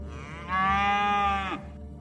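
A single loud cow moo lasting about a second, a sustained harmonic bellow that swells in and cuts off, heard on its own with no talking.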